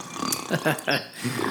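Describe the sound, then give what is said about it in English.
A voice imitates snoring heard through cabin doors, with a quick series of four short, throaty rasping bursts, moderately loud, each rising and falling in pitch over about a second and a half. “You guys can hear snoring through the doors.”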